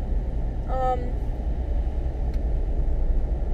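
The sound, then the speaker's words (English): Steady low rumble of a car cabin on the move, constant road and engine drone throughout, with a brief high tonal squeak near the start. “I'm driving a car”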